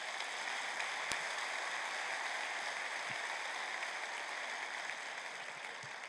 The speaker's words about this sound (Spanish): Dale un aplauso a Cristo, Señor.